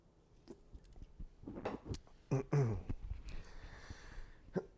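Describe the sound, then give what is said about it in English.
Quiet mouth sounds of someone sipping and swallowing water, with soft wet gulps and a brief throaty noise, no talking. “Sip of water.”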